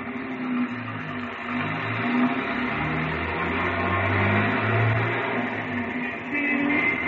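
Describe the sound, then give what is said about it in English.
A big car's engine drones steadily throughout as it drives out the airport road, its low tones rising and falling, with a constant broad road rumble and no voices. “There's another car coming in.”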